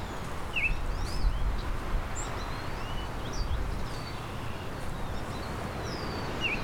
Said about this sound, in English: There's a Baltimore oriole. A high-pitched whistle.